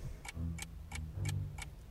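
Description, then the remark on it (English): Steady, evenly spaced ticks, about three per second, sharp and clicky like a clock, with a low hum underneath and no voices. “Is there something ticking in you?”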